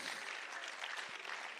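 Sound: audience clapping hands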